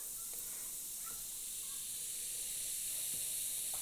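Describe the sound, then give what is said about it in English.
Seltzer water fizzes steadily into a glass of fresh orange juice, topping it up to two-thirds full, a bright continuous hiss of bubbles with faint scattered pops and crackles throughout. “And I'm going to top this up to the usual 2/3 full level.”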